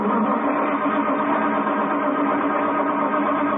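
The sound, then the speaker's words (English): A troublesome car engine grinds and churns as it fails to start in a driveway at night, a loud, steady rumble that holds without pause for several seconds, with no voices over it. “This car's giving me a lot of trouble.”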